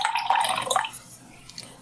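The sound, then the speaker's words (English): A beverage is poured into a glass, a bright splashing trickle that is strongest in the first second, then tapers off into faint drips and quiet. “I am pouring more of a beverage. I'm not using the bathroom in case you can hear the liquid pouring.”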